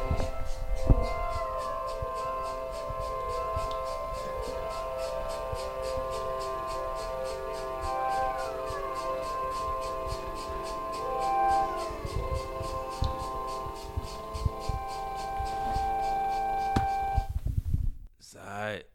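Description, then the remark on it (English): Music made for cats plays for about eighteen seconds: sustained, high tones that slide up and down like mews or purrs over a steady ticking pulse, moderately loud, then it cuts off abruptly. “This, oh, yeah, listeners, got we got some cat-specific music. Play it for me, mate. This is a sample.”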